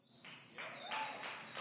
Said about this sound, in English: Okay, you're clapping.